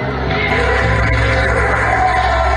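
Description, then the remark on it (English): A large crowd at a pro-Trump rally hosted by Steve Bannon roars and cheers continuously after a woman says she wants a dictator, a dense, loud wash of shouting voices that stays steady throughout, with no single voice standing out. “And what you're seeing after that is applause from Steve Bannon and roars from the crowd pro what she just said, that she wants a dictator and wants it to be Trump.”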